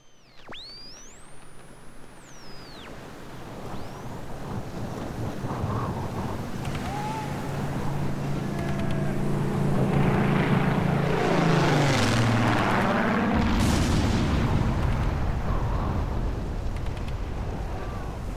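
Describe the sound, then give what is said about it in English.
World War II Spitfire propeller warplanes drone in and roar past overhead over the North Sea in a combat scene, engines swelling to a loud, rushing peak amid wind and sharp bursts of gunfire, then a low rumble lingers. “So you've got Spitfires flying over, gunfire and all sorts over the North Sea.”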